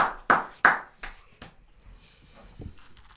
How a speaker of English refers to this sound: So round of applause, man. Round of applause. Yeah. Man. It's been a minute. For sure, man. You got to clap for round of applause. Real hand claps.